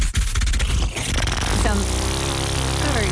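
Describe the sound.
A voice imitates an aeroplane engine with a sustained buzzing, droning hum, rough and vibrating at first, then settling into a steady pitch that rises slightly, held loudly for about three seconds.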